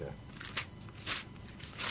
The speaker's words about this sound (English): Okay. You hear those pages turn.